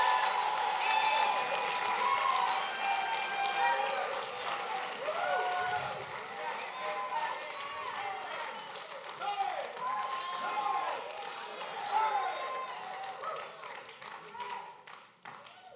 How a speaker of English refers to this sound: Go ahead. Take 30 seconds. Clap your hands, all ye people, and shout unto God with a voice of triumph.